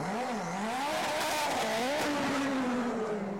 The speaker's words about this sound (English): It's a good sound, the car. Very different sound, though, isn't it? You can tell them apart. Yeah, the Honda particularly sounds very different. Engine in a different place, of course, but the GTR, very fine-sounding machine as well.